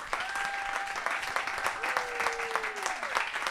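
A live audience in Santa Monica, Los Angeles, claps steadily and densely for the guests throughout, a thick wash of applause with a couple of long whistles cutting through the middle and fading out near the end.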